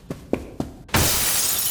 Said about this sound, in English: Bits of glass dropped and shattered on the floor.